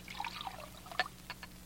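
Water poured from a pitcher in a brief, quiet trickle, with a few small splashes and gurgles as it fills a glass; no one speaks.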